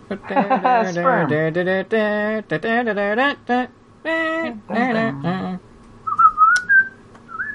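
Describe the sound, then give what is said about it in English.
A person whistles a short, thin melodic phrase near the end, following several seconds of loud, wordless voiced vocalizing. “I can't whistle. That's why I didn't do that.”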